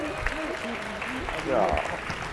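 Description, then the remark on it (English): An audience applauds two debate guests steadily for a couple of seconds, a dense wash of clapping with voices talking and calling out over it, swelling slightly toward the end. “But give them both a round of applause.”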